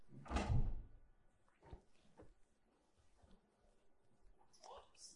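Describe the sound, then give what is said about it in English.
A door opens with a loud knock and rattle at the start as a latecomer enters, followed by quieter shuffling footsteps and faint movement, with soft voices murmuring in the background. “The last person who came that through that door got a free giveaway book.”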